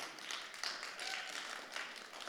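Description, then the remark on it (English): A church audience claps together during a sermon in a soft, steady wash of many hands, a dense patter that holds for the whole couple of seconds without building or fading. “It's okay to clap at that because that's really exciting, isn't it?”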